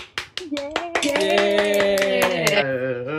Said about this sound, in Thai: ดังนั้นขอเสียงปรบมือฉันปรบมือเองต้อนรับนะคะ